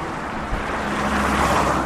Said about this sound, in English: I can always imagine that in the time we were here that you wouldn't hear this mountain of traffic. You just hear the clip-clop of hooves as the little carts went past.